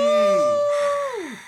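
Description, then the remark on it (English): A single voice imitates a roaring stadium crowd with a loud, sustained 'aaah' that holds steady for about a second, then slides downward in pitch and fades out. “Everybody in the stadium the goes. The crowd roars. And the crowd goes crazy.”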